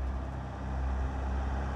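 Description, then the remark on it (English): Continuous low rumble of road traffic with lots of cars, a steady wash of car engine and tire noise with no distinct single pass-by, filling the background without any voices. “Lots of cars here now. Hope it doesn't mess up the sound quality too much.”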